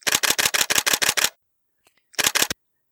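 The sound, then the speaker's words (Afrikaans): A rapid burst of about eight sharp camera shutter clicks in quick succession, then a short silence with faint ticks, followed by three more fast clicks. No voices. “Die kameraklanke skiet uit en klink soos die masjiengewere se vinnige vuur destyds toe dit burgeroorlog was in die bosse om haar dorp.”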